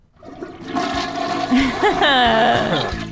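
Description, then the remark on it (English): A toilet flush sound effect used as a bathroom-break cue. It is a loud, rushing gurgle of water that swells and swirls for about three seconds, with a rising whistling refill tone near the end. “It's a poop related story, so why not bring back the old bathroom break music bed?”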